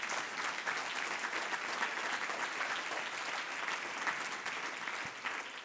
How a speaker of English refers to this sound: Give the Lord a good hand clap of praise before you're seated.